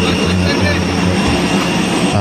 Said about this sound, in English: Okay. It's noisy. It's an airport, of course. You're expecting it to be noisy. I'll turn the volume down a little bit because it's not critical that we really hear the jet noise on this video.